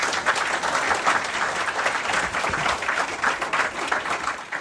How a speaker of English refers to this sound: We're delighted to have them all here, and maybe you give them a round of applause.